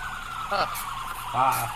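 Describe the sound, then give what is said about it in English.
An emergency vehicle's rumble siren sounds in two short rising wails over a steady low drone, moderately loud, with no one talking. “With the rumble siren going.”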